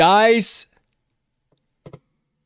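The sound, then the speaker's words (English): A short vocal exclamation, then a pause before a brief clatter of clicks as dice tumble and settle on a hard surface, heard only once. The dice are rolled to decide a sports betting pick. “The dice have spoken.”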